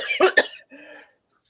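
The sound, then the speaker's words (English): Two quick, harsh coughs burst out in rapid succession, followed by a short, raspy, wheezing breath as the coughing fit trails off. “All of a sudden, I started coughing.”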